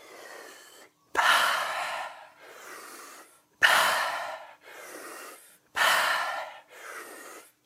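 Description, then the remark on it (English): Deep breaths in and out through the mouth during a guided breathing exercise, clear: three strong, sharp inhales each followed by a softer, airy exhale, in a slow, steady rhythm with no talking. “And we're going to start breathing deep again. But this time, we're going to breathe in and out your mouth.”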